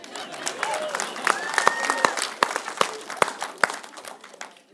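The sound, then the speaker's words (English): An audience breaks into applause: many hands clapping in a dense, uneven patter, with a few louder claps standing out, plus crowd murmur and a couple of rising whoops. “This is where you clap.”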